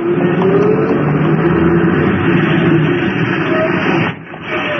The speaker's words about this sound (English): I reached the stop as the bus was pulling away.